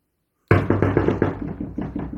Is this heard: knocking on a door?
yes